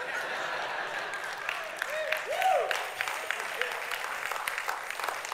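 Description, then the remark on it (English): A crowd applauds with steady, dense clapping throughout, joined midway by a brief rising-and-falling voiced cheer or whoop from someone in the audience. “Yeah, that's a good clap.”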